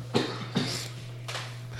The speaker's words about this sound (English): Dude, we're 44 minutes in and this cough just now kicks in. Like, it couldn't have waited 15 more minutes to kick in, but whatever.